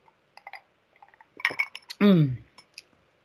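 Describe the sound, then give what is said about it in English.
Glass clinks and small clicks as someone sips a drink, followed by a brief, loud voiced exhale with a falling pitch, like a satisfied sigh after swallowing. “Let me have another sip of my drink.”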